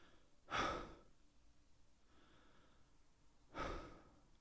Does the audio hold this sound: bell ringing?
no